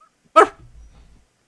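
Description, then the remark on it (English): A person voices one short, sharp bark, imitating a dog, fairly loud, followed by a brief low rumble before silence. “He barks once.”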